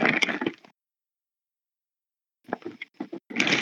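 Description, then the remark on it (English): Wet, squelchy glopping of two gallons of mayonnaise being poured into a plastic bag, loud: a thick burst, a pause of silence, then a series of sloppy plops and crinkles. “Yeah, I'm putting a bunch of mayo into a bag currently.”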